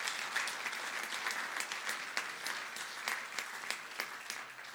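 A church audience claps steadily throughout, a dense rattle of many hands with sharper individual claps popping out, sustained at an even level without anyone speaking over it.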